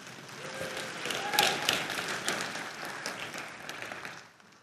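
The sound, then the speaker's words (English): An audience claps steadily for several seconds for people who took part in an illustration, a dense crackle of many hands at moderate volume, with a brief cheer partway through before the applause thins out at the end. “Can you guys clap for them?”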